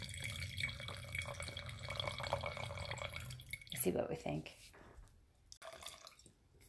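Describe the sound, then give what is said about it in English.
A red blend wine pours steadily into a glass for a few seconds, a continuous liquid splash and trickle, then stops as people talk quietly. “So she'll pour it and you'll get ready to spill it.”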